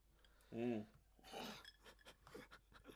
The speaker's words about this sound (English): Okay, so yeah, I think my sorry, did I cause you to cough there with the shit? Oh no, I think we've lost him. Sorry, he's dying. Everyone, you have to say sorry. You finish coughing, mate. That's fine. Very physical reaction to that joke.